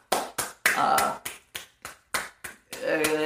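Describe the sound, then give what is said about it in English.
A steady run of about a dozen sharp hand claps, roughly three per second, with a voice talking or whooping loudly over some of them. “I applaud that. I fucking applaud that.”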